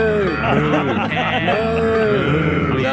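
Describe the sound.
Voices in a children's song imitate a cow's moo with drawn-out, gliding calls, loud over a busy musical backing.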